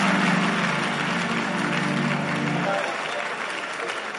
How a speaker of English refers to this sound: Hey, clap your hands for them, you know.